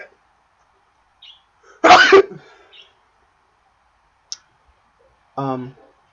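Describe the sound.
A single loud sneeze bursts out, followed by a short tail and quiet, then a faint click and a brief voiced murmur near the end.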